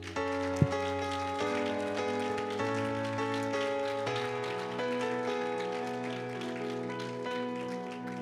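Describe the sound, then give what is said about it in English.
A church audience at Living Hope claps in praise to the Lord steadily for several seconds, a dense, rain-like patter of hands over sustained keyboard chords that shift pitch every second or so. “I know we just finished, but can we give a clap of praise to the Lord?”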